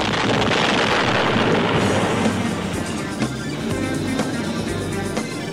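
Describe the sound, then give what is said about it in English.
A big explosion of a magnetic power pack attached to a door, set off by a throwing star, blowing a hole in the door: a dense, rumbling blast that stays loud for several seconds with crackling, clattering debris throughout and no voices. “A giant explosion blew open a hole in the door”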